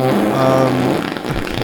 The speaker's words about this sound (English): They're going to love the fart sound effects I put on this one.